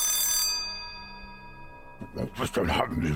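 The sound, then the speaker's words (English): A security alarm bell rings loudly in a brief burst after two intruders are discovered in a central office, its metallic tone lingering and fading for over a second before a person begins speaking. “Father says, all right, just stop that alarm.”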